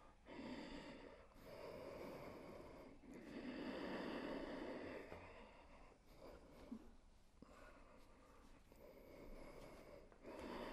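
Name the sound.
ujjayi breathing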